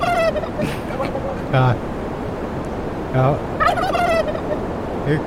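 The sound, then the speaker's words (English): Turkeys gobble several times in quick, warbling bursts, a few overlapping one another, as they are being set free at a windy spot up a flight of stairs, over a steady rushing wind that fills the background throughout. “So, let's go set some more turkeys free.”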